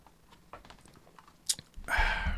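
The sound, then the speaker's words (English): Mouth sounds: a few soft wet clicks and smacks, then a louder, airy slurping sip of a drink near the end, with no talking. “Start with a little sip of that.”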